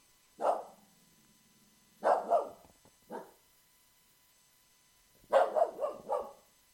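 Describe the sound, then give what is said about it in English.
A dog, Frank, barks at the window of a house in separate bursts: a single bark, a quick double, another single, then a rapid string of barks, loud with quiet gaps between, no talking. “He's at the window in my house right now. He's barking at nobody.”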